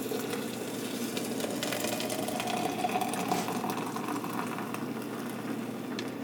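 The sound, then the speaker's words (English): Four cups of hot water are poured steadily for several seconds into a French press holding ground coffee mixed with ground cardamom and clove. A continuous gurgling splash with a faint tone rises slightly in pitch as the vessel fills. No one speaks. “And now I'm going to add 4 cups hot water.”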